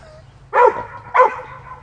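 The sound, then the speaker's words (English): A chocolate Lab and a German Shepherd barking: two loud, sharp barks about two-thirds of a second apart, each with a short echo, over a low steady background hum. “Ooh, the big standoff between Chocolate Lab and German Shepherd.”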